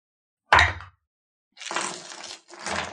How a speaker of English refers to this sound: Maybe you can all make me a perception or investigation check. Here come the dice.